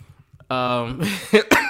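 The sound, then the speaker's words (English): A strained, voiced groan gives way to a few harsh coughs in quick succession, loud and abrupt, with no talking around them. “I'm sorry. I'm coughing after that.”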